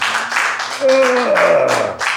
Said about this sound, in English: The energy in the room is undiluted, awkward. The applause is one of pity and confusion.